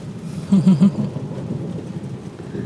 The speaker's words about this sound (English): I really hope you can hear the rain. And the thunder. Can you hear the thunder?